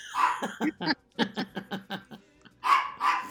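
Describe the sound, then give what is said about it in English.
A dog named Walter Boo Boo barks repeatedly at a door in a rapid string of about a dozen sharp barks, ending with two longer, louder yelping barks. No talking. “And it's without Walter Boo Boo, who is barking up a storm.”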